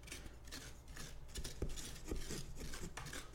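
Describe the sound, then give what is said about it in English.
Wet, rasping scrapes of a spoon or scoop gouging out pumpkin flesh, repeated in uneven strokes with soft thuds, fairly quiet and continuous, with no talking. “But I'm hollowing out some more pumpkin, though, right now, I can tell you that.”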